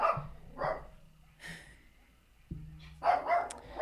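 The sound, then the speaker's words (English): A dog in the desert barks at a pack of coyotes outside, several times in short, irregular bursts, with a pause before a pair of barks at the end, over a steady low hum and no talking. “There's a whole pack of coyotes outside somewhere. That's why my dog's barking.”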